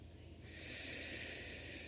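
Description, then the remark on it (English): A slow, deep breath drawn in through the nose, a soft airy hiss that swells after a brief pause and holds steady, quiet with no talking. “And when you're breathing in, I like to breathe in through my nose.”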